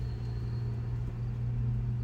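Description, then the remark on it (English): A car with worn brakes rumbles past behind the listeners with a steady low engine drone, while a thin, high brake squeal whines faintly above it. No one speaks. “We don't know if you could hear that, but someone was screeching past us. There was a squealy brake behind us.”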